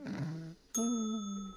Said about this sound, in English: Ring the bell.